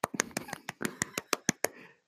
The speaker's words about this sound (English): Why did you call him a Joker? Because I'm very funny. Oh, you deserve a round of applause for that.